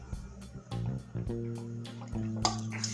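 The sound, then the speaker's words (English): Someone takes a quick sip of water: soft liquid sloshing and a few small swallowing sounds and light clinks over about three seconds, with no talking. “I'm just going to get a sip of water real quick.”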